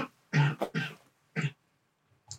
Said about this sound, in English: If people listening are smoking... Every cough, you have to take a hit. It's like 12. That's a lot. Like 33. Like, no, like close. Just a chunk of coughing. That's one hit.